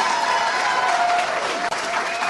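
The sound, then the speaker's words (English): A crowd applauding steadily for a woman speaking after losing an election, a dense wash of many hands clapping at once with a faint whistle or cheer tone threading through, loud and continuous with a brief dip near the end. “It's a surreal world of people clapping for a woman who has ruined her city.”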